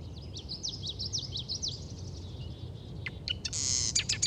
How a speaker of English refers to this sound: True to its name, we have a marsh wren singing. Marsh wrens can be near impossible to see, but you can still enjoy their conspicuous songs. Like other wren species, their songs have so much energy and are especially bubbly.